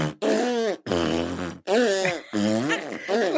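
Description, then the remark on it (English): A person makes loud fart noises with their mouth by pulling in and squeezing the lips together: four buzzy, wobbling bursts in quick succession, each bending up and down in pitch, with short gaps between them. “Hang on, the first one wasn't just like a fart noise, because you pulled your lips in a certain way.”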